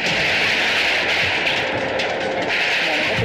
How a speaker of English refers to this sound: State police helicopter drops it. There is the explosion.